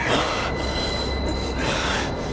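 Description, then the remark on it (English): A subway train in The Matrix rumbles loudly and steadily along the tracks as it approaches Neo and Agent Smith, a dense roar of wheels on rails with a thin metallic squeal ringing above it, and no voices. “He wraps his arm around Neo's neck and holds him there as a train approaches them both.”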